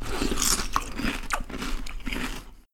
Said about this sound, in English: … slurped cornflakes at the kitchen table.